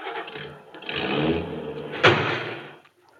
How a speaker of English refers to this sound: I hope George didn't hear the crash.